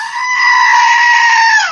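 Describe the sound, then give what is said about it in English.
A screaming goat toy, missing its ears, lets out one loud, sustained bleating scream, steady for nearly two seconds before cutting off abruptly, with no talking. “Yes, the screaming goat makes a return.”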